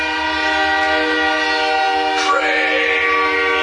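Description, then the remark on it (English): A loud, sustained train horn blares over the rumble of a passing train, its chord shifting and brightening partway through as the train rolls by. “Oh, and there's a train that appears out of the wall.”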